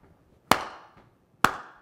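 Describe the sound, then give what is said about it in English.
Two sharp, loud hand claps about a second apart, each with a bright, quickly fading ring, over near silence and with no voices. “At the beginning it was the same, you just had hand claps and voices.”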